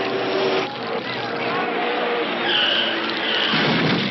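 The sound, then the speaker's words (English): A race car roars and skids loudly on a race track for several seconds, with tires squealing in rising and falling whines through the second half amid continuous, rough engine and crash-like noise as a crash happens on the track. “Oh, there's a crash on the track.”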